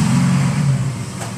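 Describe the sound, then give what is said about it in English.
A steady, loud engine rumble of car traffic, deep and droning with a broad hiss above it, easing slightly toward the end. No one speaks. “Got the car sounds in the background.”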